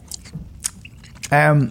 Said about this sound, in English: Okay, so we're both chewing Starburst.